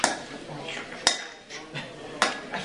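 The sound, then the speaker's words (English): A bench is slammed against a door three times to break through it, sharp heavy bangs about a second apart, with rattling clatter and faint background noise between the blows. “With the act of smashing the bench against the door, the truth of their prison is revealed to them.”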